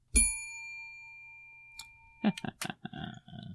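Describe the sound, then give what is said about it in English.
A single bright bell ding rings out clearly and fades away over a second or so, then a person begins talking after a short pause. “absolutely ridiculous, of course, that you could have a stimulus and response action to just a bell ringing.”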